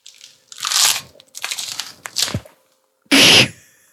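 A foley bone-crack effect of someone's neck being broken: a series of wet, crunchy snaps and twisting cracks, building across several bursts and ending in one loud, sharp crunch, with no talking.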